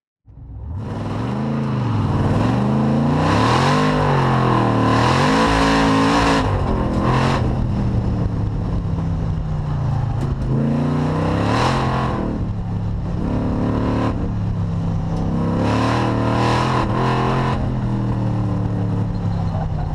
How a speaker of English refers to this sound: 1968 Camaro racing the clock. It's not racing anyone else, but the clock.